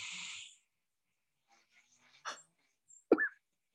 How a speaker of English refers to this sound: Guess I was snoring.